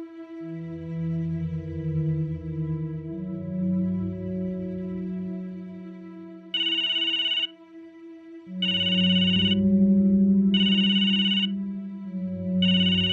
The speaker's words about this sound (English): I woke with a jolt, scrambling around for my phone to turn off the alarm. It took me a second to realize that my phone was ringing. It wasn't my morning alarm.